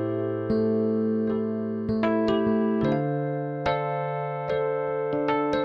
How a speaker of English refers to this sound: But what about sad music? Sad music is usually played in minor keys, especially A minor.